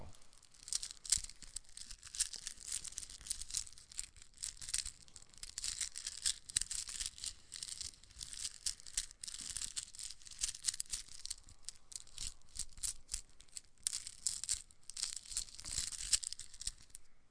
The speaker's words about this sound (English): It's a pencil and a pencil sharpener. You ready? No, I gotta sharpen your pencil.